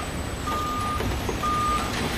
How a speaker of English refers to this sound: Trucks come in.